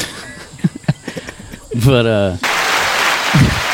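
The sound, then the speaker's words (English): A few faint spoken sounds and a short sung-like vocal lead into an abrupt burst of loud, dense applause that fills the last second and a half, with a voice briefly heard beneath it. “Yeah, double applause.”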